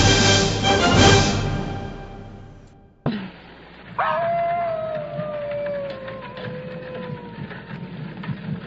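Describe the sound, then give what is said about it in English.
A lone wolf howls in one long, sustained wail that slowly slides downward in pitch, following a brief burst of rough, rumbling noise that cuts off abruptly. “Werewolf! Werewolf? There! What? There, wolf!”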